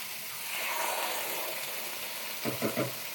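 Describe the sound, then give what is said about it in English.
Cherry tomatoes, added to a sauté base, sizzle in a hot pan: a steady, bright frying hiss throughout, with three short, louder crackling bursts close together near the end. “Okay. So now we're hot, we're sizzling here. I'm gonna add our cherry tomatoes.”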